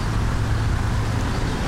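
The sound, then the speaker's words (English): A steady roar of road traffic on Valley Road near Macopin, with a low engine rumble and broad hiss, holding at an even level throughout with no voices and no distinct single vehicle passing. “Valley Road near Macopin.”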